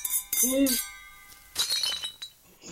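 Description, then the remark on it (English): Several glasses clink together in a toast, bright overlapping chimes ringing on for a moment, with a short voiced exclamation of "salute" and some background chatter mixed in. “Everybody raise their glasses first.”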